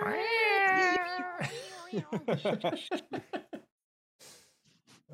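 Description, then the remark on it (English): A person mimics two cats yowling in an alleyway with a drawn-out, wavering yowl for over a second, then breaks into a run of rapid laughing bursts that trail off into quiet chuckles. “Just like with the sounds of two cats in an alleyway, just that yowling.”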